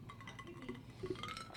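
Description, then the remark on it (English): Ice cubes that were just added to a glass of wine clink softly against the glass, a few light, scattered taps over a quiet background hum, with no one speaking. “I forgot to put the wine bottle in the refrigerator, therefore I needed my wine to be chilled, which is why I added some ice cubes.”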